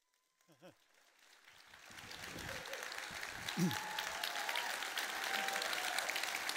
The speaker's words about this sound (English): Oh my goodness. I'm in shock. And stop clapping because you're going to steal from my message time, okay? You can clap with me one-on-one in the lobby, okay?